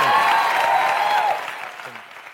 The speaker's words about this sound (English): Everybody, big round of applause. Mr. Frankie.